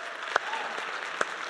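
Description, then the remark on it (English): A small audience claps for a newly introduced children's ministry team member, in a steady patter of overlapping hand claps, with a couple of sharper, louder claps standing out; no one speaks. “if that name sounds familiar, you can clap.”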